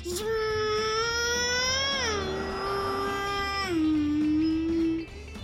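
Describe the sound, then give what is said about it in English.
A child's voice imitates a cat, stretching one long, wavering meow for about five seconds. The pitch dips in a couple of steps, sounding fairly loud. “and I'm a cat”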